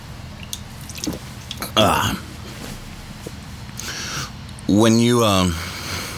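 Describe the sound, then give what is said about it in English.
A few soft slurping sips from a drink, followed by a louder wavering vocal sound like a throaty exhale after swallowing, with faint background noise throughout. “let me take a sip of this drink because I'm about to cough again.”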